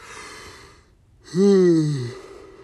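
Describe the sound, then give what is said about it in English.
A single drawn-out yawn: a breathy inhale, a brief pause, then a loud voiced exhale that slides downward in pitch and fades out. No one speaks. “Ignore that yawn. You didn't hear that.”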